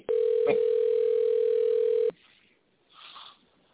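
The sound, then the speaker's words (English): A telephone ringing tone: one steady, loud electronic beep held for about two seconds, then cutting off into near silence with a faint muffled rustle afterward. “He's phoning himself. How is he not answering? Pick up the phone and say hello.”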